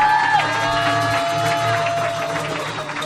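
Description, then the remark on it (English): An audience claps and cheers for Reagan and Watkins steadily for the whole three seconds, a dense, loud wash of applause with a sustained high tone running over the crowd noise. “And keep clapping your hands for Reagan and Watkins, ladies and gentlemen.”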